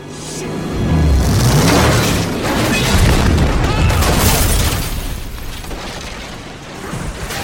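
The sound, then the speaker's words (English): A car launched through the air slams down onto a boat with a loud, heavy crash, followed by several seconds of booming rumble and clattering debris that gradually settles and fades. “Brian and Roman successfully land the car onto Carter Verone's boat.”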